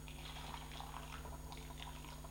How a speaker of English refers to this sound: So I'm running through around about, I'm going to run through around about a litre of hot water just to warm this up. Now this is an 8-cup Chemex.